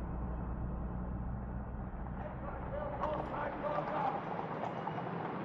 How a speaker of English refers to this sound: Oh, aren't the horses lovely? Ah, they're beautiful.